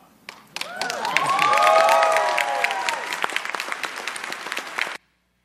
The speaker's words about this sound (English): stand up and let everybody clap for you.